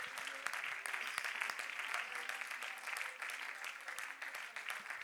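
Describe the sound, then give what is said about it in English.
An audience claps their hands to the Lord in praise, a dense, steady wash of many overlapping claps that stays loud and sustained throughout without any clear rhythm. “Would you clap your hands one more to the Lord, time to the Lord, and give him praise.”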